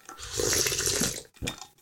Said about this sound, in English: That's me sipping tea.